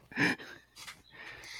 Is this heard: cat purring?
no